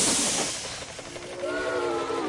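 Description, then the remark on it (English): A toy train, its switch set the wrong way, lets out a loud burst of hissing steam that fades slightly, then a thin whistling tone rises over the continuing hiss. No voices. “You've got the switch going the wrong way. I've played with this train before.”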